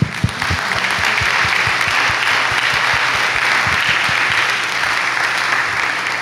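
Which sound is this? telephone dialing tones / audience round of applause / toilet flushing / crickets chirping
audience round of applause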